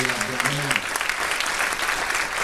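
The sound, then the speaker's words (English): A crowd applauds the honorees with dense, steady hand clapping that stays loud and even throughout, while a voice briefly speaks over the start of it. “And the honorees, those who have been recognized and those who will be recognized, deserve another hand clap of praise and applause.”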